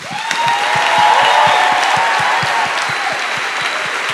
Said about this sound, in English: We're going to finish in a moment with a blessing, but before we do, do just join me again in applauding all those who've poured their creativity and countless hours into making tonight a reality.